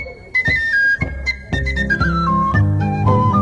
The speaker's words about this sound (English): Great tin whistle playing, too.